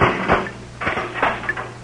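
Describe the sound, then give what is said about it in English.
A door is opened as soup is brought in, with a few sharp wooden clunks and rattles spread over a couple of seconds against a low background hum. No one speaks. “Now, send back from the door while I bring it in.”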